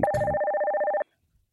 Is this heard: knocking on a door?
no